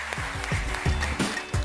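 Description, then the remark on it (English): A church audience claps steadily and fairly loudly during a service as three people come up to the stage to be baptized, a dense wash of hand claps with a loose recurring pulse running through it, and no voices rising above the applause. “I'm gonna ask you to clap one more time as we have our three getting baptized into this service come up to the stage.”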